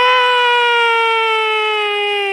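A loud, sustained shriek of a horror-movie scream holds one piercing pitch for over two seconds, sliding slightly lower as it goes, with no talking underneath.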